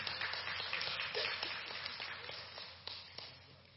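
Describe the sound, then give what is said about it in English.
A crowd applauding the actors who have just performed: many hands clapping in a dense, steady patter for a few seconds, fairly soft overall and easing off slightly toward the end, with no one speaking. “Y'all clap.”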